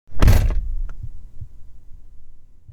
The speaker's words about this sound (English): Then his front door swings open with a loud bang.